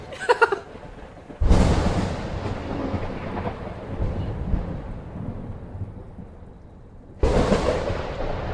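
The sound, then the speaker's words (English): Two sharp, loud thunder cracks from a cloud-to-ground lightning strike, the first trailing off into a long rolling rumble before the second bursts in near the end. No one speaks. “That's cloud to ground lightning right there.”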